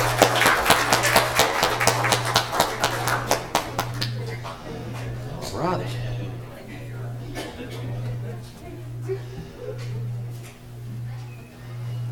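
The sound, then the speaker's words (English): An audience applauds the ladies after a performance by the bell choir and the kids. Dense, brisk clapping lasts a few seconds, then thins to scattered claps and murmuring voices over a low, steady pulsing hum. “Let's give a little round of applause for great job, ladies.”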